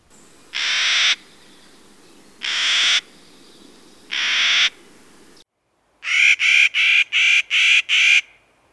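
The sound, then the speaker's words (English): A Clark's Nutcracker, a jay-sized gray bird with black wings, gives three drawn-out, raucous grating calls at a steady pace, then a quick run of six harsh, clipped notes, loud with no other sounds. “They're also readily identified by their raucous sound, such as this.”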